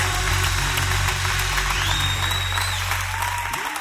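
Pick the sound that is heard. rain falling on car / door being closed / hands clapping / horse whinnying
hands clapping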